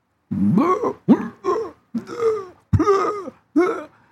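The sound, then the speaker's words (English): A voice imitates dry heaving: about six loud, guttural retching bursts in quick, uneven succession, with short gaps between them and no words. “And so I'm getting it, and all of a sudden my whole family is around me, and all of a sudden I'm getting dry heaves.”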